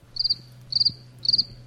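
Three quick bursts of cricket chirps, evenly spaced about half a second apart, each a rapid trill of high pulses over a faint low hum, with no voices.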